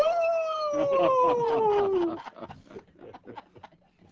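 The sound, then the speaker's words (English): A long, drawn-out howl like a dog's, loud, slides slowly downward in pitch for about two seconds before fading into quieter voices talking. “Dogs all over town are sitting up there.”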